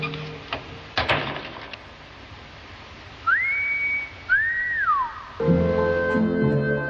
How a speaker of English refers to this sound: You know how to whistle, don't you, Steve? You just put your lips together and blow.